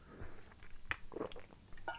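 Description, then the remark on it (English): Someone takes a sip of a drink, producing a few soft, wet mouth clicks and a gulp spread over two seconds, with no talking. “Just took a sip.”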